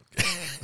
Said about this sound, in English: It's the cough. Sure does blow a bunch of dust everywhere.